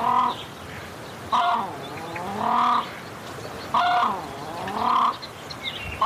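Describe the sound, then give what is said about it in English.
An Australasian crested grebe gives repeated harsh, nasal honking calls, about five loud squawks in an uneven rhythm with brief gaps, with no other sounds. “Here is the Bird of the Century.”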